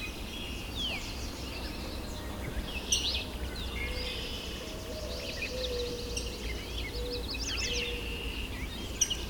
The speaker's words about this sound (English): Yellow warbler.